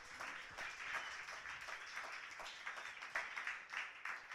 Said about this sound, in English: A 27-3, we applaud the poets. And keep that applause going as we go to the second poet in the last round